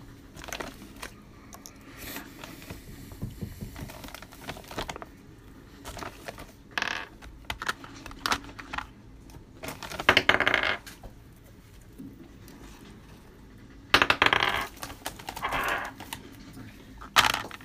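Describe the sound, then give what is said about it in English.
Hard metallic clatters as small metal dice, one of them red, are rolled and tumble across a table, with two louder bursts of rattling amid scattered quieter clicks and faint background murmur. “Is that a metallic? Is that a red one? Yeah. Nice. Doesn't roll very friendly, though, overall.”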